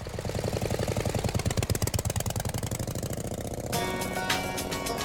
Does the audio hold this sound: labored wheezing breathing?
no